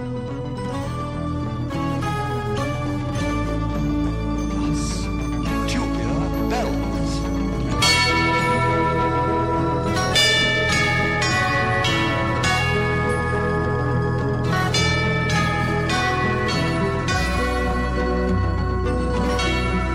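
Loud instrumental rock with tubular bells struck repeatedly, their bright metallic chimes ringing out over sustained bass and layered guitars. The music is continuous, with no voices.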